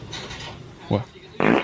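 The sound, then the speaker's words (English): A short, low fart sounds, followed a moment later by a louder, rough rasping burst, waking a sleeping little dog, with a faint murmur of background noise throughout. “That was somebody else that farted and woke up the dog.”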